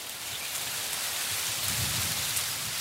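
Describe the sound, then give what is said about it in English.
Wind rustles steadily through tall trees in a forest at night, a dense continuous hiss of leaves with a soft low rumble swelling midway, even in loudness, with no voices. “And the sound of wind rustling in the trees.”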